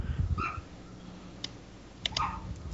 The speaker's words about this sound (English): Do you want me to shut the dog up? Not permanently. Oh, now the biggest dog started going.